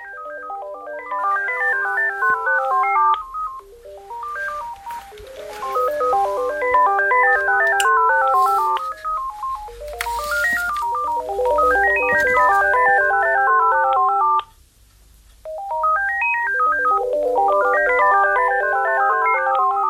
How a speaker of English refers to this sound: even though the first cordless phone and the second cordless phone are playing the same tune, they're both doing it at different times